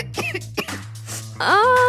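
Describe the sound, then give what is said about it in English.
A boy coughs during his school play, a few short, rough bursts ending with a longer, hoarse, voiced strain; no words are spoken. “Good thing Walmart's pharmacy has everything you need for coughs, colds, sniffles, and even the flu.”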